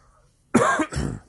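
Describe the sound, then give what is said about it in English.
A person coughs twice in quick succession, fairly loud, the first burst harsh and throaty and the second lower and rougher, with quiet before it. “Goddamn cough.”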